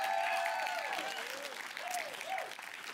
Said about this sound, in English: How about a little better applause for the dads? Yeah.